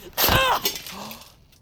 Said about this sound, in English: I think I just got a bit carried away there. I ripped shirt.